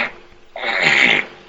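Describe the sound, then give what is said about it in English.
A single loud, raspy fart lasting just over half a second, with a sudden start and abrupt cutoff and no talking around it. “It's just a talent. Farting.”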